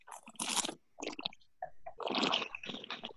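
Wet slurping and swishing of Chardonnay wine in the mouth during a tasting, coming in several noisy bursts with short pauses, the longest and loudest swish near the end. No talking.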